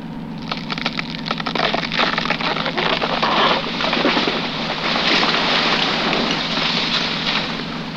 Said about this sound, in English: Well, there's no way he could have survived that tree falling on him.